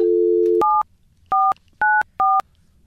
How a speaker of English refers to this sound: Mostly just to get the phone number right. Yeah, watch those sausage fingers. Don't dial wrong.